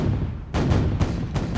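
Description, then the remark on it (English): British cannon fire from Boston and from three warships anchored in Boston Harbor pounds the heights at Charlestown: a rapid volley of three or four heavy, loud blasts over a constant deep rumble, with no voices. “The British pounded the heights with cannon from Boston and three warships that were anchored in Boston Harbor.”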